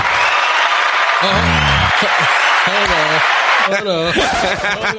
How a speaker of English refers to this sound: So, round of applause to Queen Issa Rae.